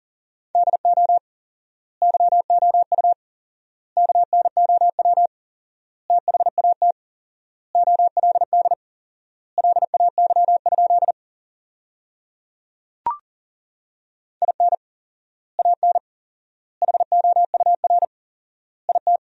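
Morse code at 40 words per minute with four-times word spacing, sending sentences built from the 400 most common words: a steady, mid-pitched beep keyed in rapid dots and dashes, grouped into words separated by long silent gaps, with one sharp click partway through.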